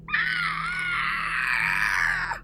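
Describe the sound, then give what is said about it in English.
A giant spider monster, a Skulltula, lets out one long, shrill shriek of pain, loud, wavering slightly in pitch for about two seconds before cutting off abruptly, with no talking. “Link saw a blurry image of the new Skulltula rearing its teeth to bite, but then it unexpectedly shrieked in pain.”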